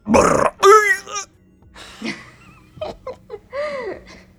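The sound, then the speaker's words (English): A voice croaks and gurgles in a string of guttural, burp-like bursts, imitating the noise of a slod, a monstrous frog creature summoned with the Summon Aberration spell, with warbling pitch and short pauses between the loud, throaty calls. “I hope I'm not supposed to replicate that noise. The slod makes a blah, blah, blah, blah noise and, like, waves its arms.”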